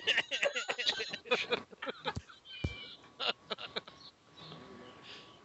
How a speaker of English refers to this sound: Wow, what are you doing over there? I hear birds in the background and everything.